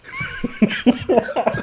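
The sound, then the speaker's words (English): A short fit of rapid coughing, about six quick voiced bursts in a row, fairly loud, with no talking around them. “1 second, I'm coughing.”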